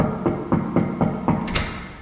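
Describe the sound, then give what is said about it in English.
Five steady, evenly spaced knocks on the office door of National American Radio's archivist in the Lala Plaza basement, followed by a brief sharp click like the latch or handle turning. “I've also come down to record the sound of his door, for completists.”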